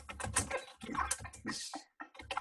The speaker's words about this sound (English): Who's typing? That's me. My bad. I'm gonna need you to stop. I'm gonna need you to stop playing kung fu. Doing keyboard kung fu because you was really hitting those damn keys, bro.